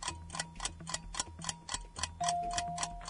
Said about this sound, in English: Is it, or was it a timer situation? It's a timer situation.